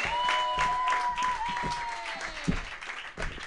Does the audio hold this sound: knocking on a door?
no